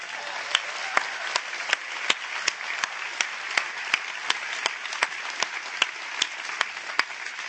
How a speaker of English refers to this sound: Now you can clap.